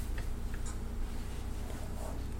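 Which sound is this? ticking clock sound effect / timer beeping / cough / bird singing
ticking clock sound effect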